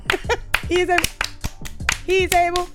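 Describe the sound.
Hands clap in a studio in a quick, irregular run of sharp, bright slaps, mixed with voices talking or calling out over them at a lively volume.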